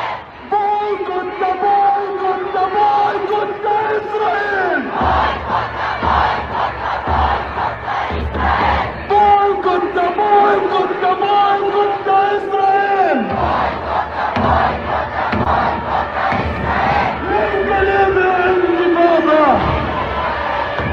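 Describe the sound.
A large protest crowd in Stockholm, Sweden chants in loud unison, repeating the same phrase in cycles of about eight seconds. Each round holds sustained, droning voices before the pitch falls away into a burst of shouting.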